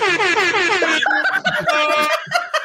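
A loud, blaring air horn sounds: one long wavering blast, then a quick run of short, choppy honks, with a bit of laughter mixed in.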